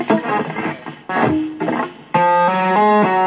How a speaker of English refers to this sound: So those four notes that you just heard, I didn't pick the string, I just thumped my fingers onto the fretboard and made a note that way.